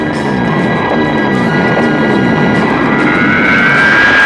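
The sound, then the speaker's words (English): A loud, steady engine roar runs throughout, with a buzzing harmonic drone and a rising whine toward the end. It is a cartoon motorcycle sound effect, like a Hanna-Barbera Roadrunner sound, revving past. “I mean, listen to these motorcycles.”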